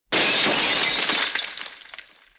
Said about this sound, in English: She pivots again, and another black-and-white arrow crashes through the front windshield of the car, killing the gray-haired man.